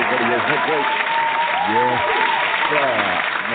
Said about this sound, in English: But let's give ourselves a round of applause, man, before we get up in here. Not us, but you. Let me give you a round of applause for coming in this house out here.